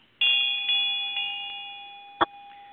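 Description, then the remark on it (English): A small ritual bell is struck four times in quick succession at an altar during a ceremony, its clear ringing tone sustaining and slowly fading, followed by a brief sharp knock near the end. No one speaks. “Vine rings the bell.”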